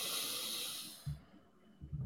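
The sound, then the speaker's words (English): A long, deep, airy breath drawn in from the bottom of the diaphragm during a guided breathing exercise, a steady breathy hiss that tapers off after about a second, followed by a couple of soft, low bumps. “Inhale, big.”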